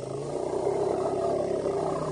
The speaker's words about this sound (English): Elephants produce a variety of different call types. The most common call type is the low-frequency rumble.